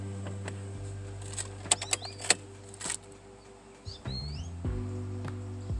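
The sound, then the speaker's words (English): Several birds chirp and call back and forth outdoors at a park beside a water treatment center, short bright tweets and whistles scattered over a steady low hum, moderately loud. “Birds, you hear that?”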